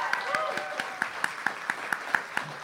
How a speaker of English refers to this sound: Well, folks, we want to thank you for being here tonight. First of all, let's give a huge round of applause to our special guest, Mr. Stephen Graham Jones.